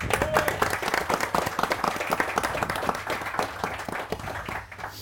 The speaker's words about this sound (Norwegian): Applaus til deg.